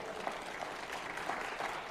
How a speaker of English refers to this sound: Come on, clap your hands and thank the Lord.